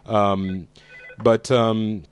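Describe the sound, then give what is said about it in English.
An incoming phone call rings with two loud, tonal bursts separated by a short gap, the second ending in a brief electronic chirp. “Turkey's getting a phone call to relieve the tension.”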